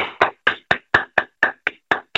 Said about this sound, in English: All right, let's clap it up for opening day.